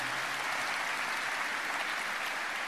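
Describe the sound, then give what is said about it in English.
An audience clapping their hands together, a steady, dense wash of many overlapping claps that holds at an even loudness throughout, with no voices heard. “Y'all come on, clap your hands and say amen.”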